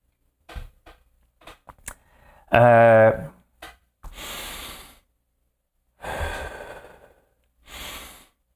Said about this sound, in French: Breathe in, breathe out. Quand on respire, et c'est pour ça que les exercices de respiration, c'est excellent, hein?